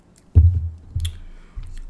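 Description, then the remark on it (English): A few soft mouth sounds: a wet sip of beer from a bottle with a low gulp, followed by a couple of quieter swallowing clicks. No one speaks. “So yeah, I'm going to give it a sip.”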